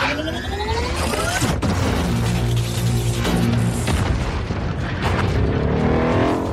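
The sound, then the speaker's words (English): Loud, dense action-movie mayhem of giant robots fighting: heavy punching impacts and metallic crashes over rumbling booms, with rising mechanical whooshes and whines throughout, no pauses. “We have a clip, and because they've not released many clips of actual dialogue from this film, for reasons we'll get to, this is what passing for a clip. It's mostly punching.”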